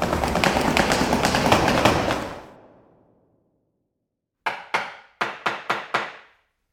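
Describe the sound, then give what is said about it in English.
A loud rushing burst fades into silence, then a hammer strikes sharply as a sign is hammered up: two blows, a short pause, then a quick, steady run of four more, with one final hit. “fly over to that sign he's hammering up and see what it says.”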